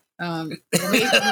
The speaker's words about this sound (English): It's not choking if I'm coughing. I'm sorry. Okay. That's what mom says. Mom goes, if you're coughing, you're not choking.